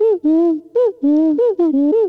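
A cartoonish video game voice of Bottles, the short-sighted mole character: a quick run of about eight warbling, sing-song gibberish syllables, loud, with pitch sliding up and down and no real words.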